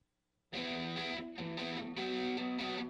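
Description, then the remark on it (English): After a brief silence, a loud, shimmering angelic choir chord bursts in and holds, shifting a few times over the next couple of seconds, with no talking. “The Angelic Tones coming up.”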